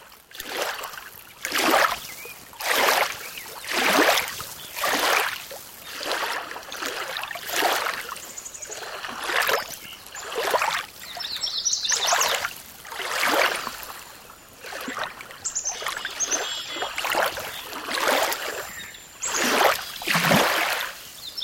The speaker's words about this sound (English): But before we go, a pause in the late morning along a large lake where a light wind provides the pulse for this recording of small waves against the shore. From Quabbin Reservoir in Massachusetts, this is Jonathan Storm's Lakeside Rhapsody.